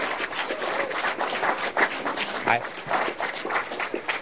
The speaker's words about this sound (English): And I think we all know who that is, Mayor Willie Brown. So let's give Mayor Brown a huge round of applause.